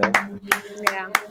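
A handful of sharp hand claps, about five, struck at an uneven pace, each a crisp bright smack over a faint steady low tone that hums underneath.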